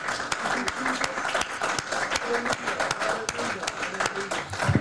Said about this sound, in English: Let's give the Lord a hand clap of praise before we're seated.